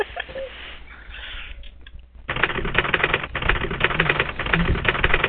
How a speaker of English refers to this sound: Ah, that must get a faster typewriter.